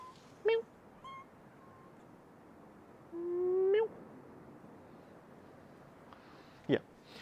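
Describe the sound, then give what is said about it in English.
A kitten meows several times: short, high-pitched mews, then one longer drawn-out cry that rises at the end, and a final brief squeak, over a faint steady background hiss. “I can hear you, kitten. So can everyone else.”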